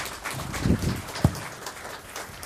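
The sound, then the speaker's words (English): An audience applauds, a dense, steady patter of many hands clapping at a soft level, with a couple of brief low thumps mixed in and no voices. “Give a round of applause for Colton.”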